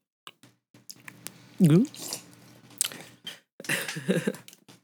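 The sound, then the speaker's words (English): Wet mouth chewing saliva and smacking in irregular bursts, with a brief voiced vocal sound partway through and a few soft clicks and squelches around it. “Yeah, I'm chewing my saliva.”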